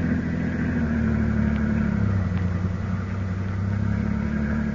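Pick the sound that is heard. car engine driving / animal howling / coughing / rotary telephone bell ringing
car engine driving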